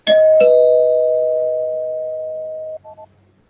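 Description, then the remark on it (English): A loud two-note ding-dong doorbell chime, rung as a spoiler bell, rings out, the second tone ringing on for a couple of seconds before cutting off, followed by two quick faint blips. No one speaks. “Let me ring the spoiler bell so we can speak a little bit in detail and then sure.”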